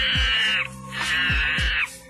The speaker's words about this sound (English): But it's called Three Orangutans, One Blender, and it's the reaction videos are people watching something, and this is the audio that plays. So it's like dark, dark music, and there's orangutans.